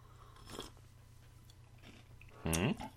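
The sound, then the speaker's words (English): Crunchy chewing on a cookie: a few scattered bites and crunches over a low steady hum, with a louder crunch near the end overlapped by a brief voiced murmur. “Take a bite of that cookie and take a sip of this.”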